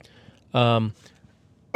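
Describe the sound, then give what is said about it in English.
A loud, gravelly cough or throat-clearing burst lasting under half a second, with quieter background rustle before and after and another sharp onset just as it ends. “excuse me, I keep coughing now.”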